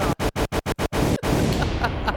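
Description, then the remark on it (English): A gunshot sound effect: a rapid, evenly spaced volley of about seven loud, harsh shots, then one more crack and a sustained noisy rumble trailing off. No one speaks. “Hit him with the gunshot.”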